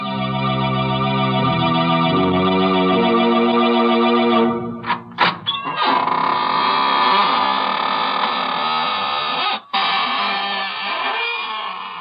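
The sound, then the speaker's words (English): The squeaking door of the radio show Inner Sanctum Mystery creaks open slowly in one long, loud, drawn-out groaning squeak, its pitch wavering and stepping as it swings, with no voices. “This is your host, welcoming you in through the squeaking door.”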